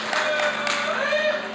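An audience at Humanity Church applauds a person for a thought they shared, in a steady, dense wash of clapping that holds at an even level for the whole moment, with a few voices mixed in underneath.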